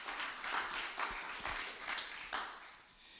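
An audience claps together as a clap offering to the Lord, a dense, continuous patter of many hands that stays fairly steady for a few seconds, with no voices standing out.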